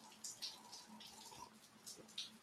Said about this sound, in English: But I think the sound of the rain in the background may be nice.